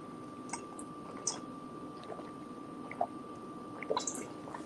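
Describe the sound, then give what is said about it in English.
Someone drinks Ocean Spray Cran Tropical juice, with a handful of quiet wet gulps and swallowing clicks spaced irregularly over a low, steady background hum. No one speaks. “So I fuck with some new Ocean Spray Cran Tropical.”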